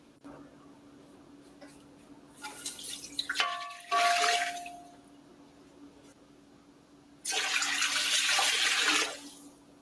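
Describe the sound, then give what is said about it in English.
Reverse osmosis water pours into a container in two separate bursts, a brief rising splash and then a steady, louder gush lasting a couple of seconds, with a faint hum underneath and no talking. “Let me add the water.”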